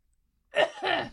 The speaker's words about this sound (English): Gosh, should have coughed before we started recording.